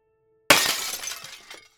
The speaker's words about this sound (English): Then the sound of shattering glass sent chills down my spine.